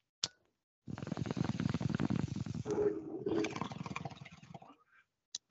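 A sharp click, then about four seconds of deep, rapid water bubbling and gurgling from a bong being smoked, loud and steady, ending with another short click. No one speaks.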